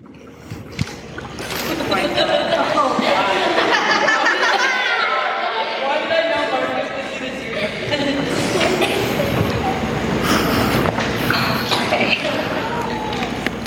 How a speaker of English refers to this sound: Okay, so I want all of you to open the water bottle. When I say go, you can pour at whatever speed you want, okay? But you cannot stop until I say stop. So you have to keep pouring into this cup until I say stop.